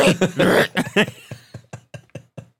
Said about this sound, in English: Cough that fucking fur balls in the middle of the podcast.